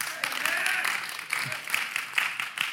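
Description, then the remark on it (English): A few scattered, uneven claps break out from about six audience members, sparse and irregular against a hum of background noise, never building into full applause. “Six of you clap because now you're offended.”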